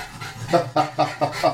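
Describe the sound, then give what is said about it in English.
A dog pants heavily and rhythmically, with about five quick breathy bursts spaced evenly across the moment and a faint hiss between them. “Dog is heavy breathing.”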